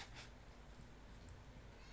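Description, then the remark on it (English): A cat meows softly against a steady background hum, a short, quiet vocalization without any talking. “I'm about to throw this fucking cat.”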